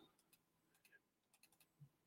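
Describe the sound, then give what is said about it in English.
A series of quiet, sharp mouse clicks, some single and some in quick pairs, tapping along irregularly with no one talking, as someone clicks an item on a computer trying to open it. “I'm clicking it to open it. I thought it opened when I clicked it.”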